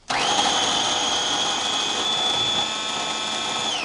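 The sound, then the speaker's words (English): A food processor with its regular blade in the bottom blends beans into a paste, whirring steadily at high speed: a loud, continuous motor whine with a bright tonal hum that stays level for a few seconds before easing slightly near the end. “If you're using a food processor, put your regular blade in the bottom, the one that kind of smithereen stuff.”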